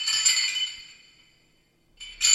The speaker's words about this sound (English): Pausing between each cautious motion, you watch to see if the guard twitches at the metallic clinking of the chain's rustle.